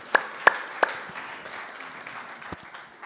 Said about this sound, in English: So, you know, maybe a round of applause. Yeah.